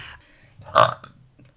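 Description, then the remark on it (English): A single loud burp erupts abruptly, a short guttural belch with a rough rasp that cuts off quickly, followed by faint breathy noise. “That was the loudest. Is what they call a belch.”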